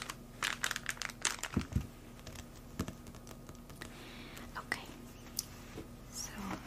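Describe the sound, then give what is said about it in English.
Crisp crinkling of a plastic bag being pulled off three magazines, in irregular bursts of rustles and small crackles, busiest at the start and then softer, scattered handling noises. “Okay, so I still have the plastic bag on these, and I'm going to go ahead and remove it, and then we can jump right in.”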